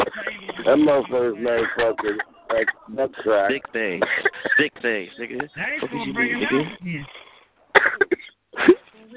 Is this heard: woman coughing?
yes